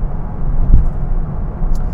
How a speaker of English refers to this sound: Okay, well, I'm going to be hitting onto the freeway here. I got a garbage truck nailing me up my trumpet here